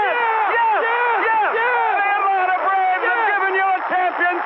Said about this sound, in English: Listen to this crowd! A mob scene on the field!